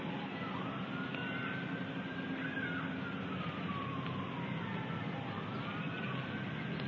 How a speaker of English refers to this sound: It's not lost on me that when all those sirens were going off while we were talking about all the problems, you know, things just don't happen by accident. It's a reminder that we need to be ready.